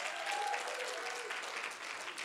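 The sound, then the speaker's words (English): An audience claps steadily for the children who just finished first grade and are going into second grade, a dense, even patter of many hands sustained throughout at a fairly loud level, with a faint brief tone sounding briefly early on. “All right, let's clap for them.”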